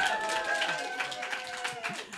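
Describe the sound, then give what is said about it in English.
An audience breaks into steady applause for the bisexuals in the room, dense overlapping claps holding at an even level for a couple of seconds, with some higher voiced cheering mixed in. “Round of applause for the bisexuals in the room.”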